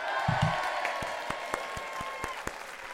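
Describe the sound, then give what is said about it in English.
Applause with a crowd's noise: sharp, irregular claps ring out at a moderate level over a steady, murmuring wash of audience sound, with no distinct voices. “Oh, and the crowd goes wild.”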